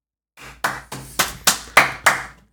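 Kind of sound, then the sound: human body sound, one person clapping hands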